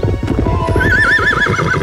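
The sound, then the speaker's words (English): A horse lets out a loud, wavering whinny while its hooves clip-clop in a steady rhythm underneath, as it stops in a field and Conan climbs onto its back. No one speaks. “And wouldn't you know it, the horse stops and Conan climbs up onto its back.”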